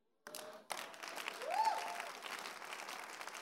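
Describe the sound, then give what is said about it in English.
A crowd claps for Jesus together in a dense, sustained burst of applause that starts abruptly and continues steadily, with a brief rising whistle or voice cutting through the middle. “I suspect those who are not clapping for Jesus.”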